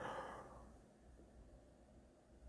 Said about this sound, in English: Oh my goodness, that was a big yawn.